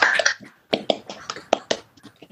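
Scattered applause from a small group, sharp uneven claps overlapping in bursts rather than a steady roar, moderately loud with brief gaps between flurries.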